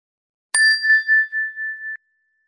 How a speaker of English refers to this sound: And we'll begin the meditation with a ring of the chime, and we'll end the meditation with a ring of the chime.